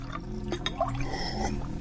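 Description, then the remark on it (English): White wine (Riesling) poured in a steady, continuous trickle for about two seconds, with a faint ringing fill tone and a few bright drip-like splashes along the way. “Fancy some white wine?”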